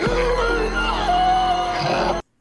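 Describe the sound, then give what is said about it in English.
A man screams on seeing a head, in one long, strained, raspy burst as he sucks in air, harsh and loud with a wavering pitch for about two seconds before cutting off abruptly. “Because he's, like, sucking in air as he's screaming.”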